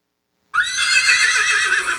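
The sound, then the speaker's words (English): A loud soundboard sound effect of a horse whinny bursts in after half a second of silence and carries on steadily to the end, bright, with no talking over it. “All right, that actually, I mean, he was riding a horse, so yeah.”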